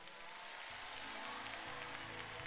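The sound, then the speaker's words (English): An audience claps hands in praise in a steady, dense wash of applause, while low sustained organ-like tones enter partway through and hold beneath it. “Because see, while you clapping your hands and the devil is wreaking havoc in your home, this confuses the enemy.”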